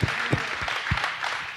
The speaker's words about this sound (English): Yeah. That deserves a clap. Come on.